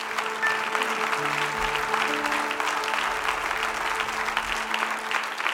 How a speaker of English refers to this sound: Would you clap your hands thunderously unto the Lord and give him praise?